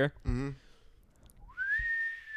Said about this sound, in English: The worst whistle I've ever heard, man.